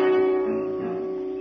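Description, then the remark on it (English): A steady, humming car engine drones on at an even pitch, moderately loud, fading slightly over a second and a half with no one talking. “This is a neat car. Yeah, we gotta dump it pretty soon.”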